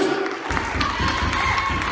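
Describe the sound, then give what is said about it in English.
An audience in a church claps and cheers in a dense, steady roar of overlapping hands and voices, with a sustained tone and rhythmic low thumps underneath. “You praise on a bother. You clap on a bother.”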